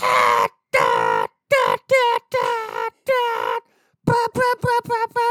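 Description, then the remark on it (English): A voice loudly vocalizes a brassy, high-pitched fanfare with no words, imitating a film score's helicopter chase music: sustained blasts, then a rapid string of short, punchy stabbed notes, like a trumpet section playing incredibly high notes as loud as possible. “There was one track that I did kind of like because of just how insane the brass goes.”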